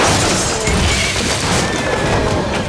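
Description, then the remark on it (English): A loud, dense crash of splintering and heavy pounding as the Cretan bull charges out of its cage into the stable, sustained as a rumbling roar for a few seconds with no voices. “Theseus flung himself to the side, just in time to evade the storm of hooves and horns that burst from the cage and into the stable.”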